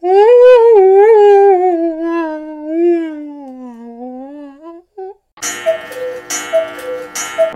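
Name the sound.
voice imitating whale call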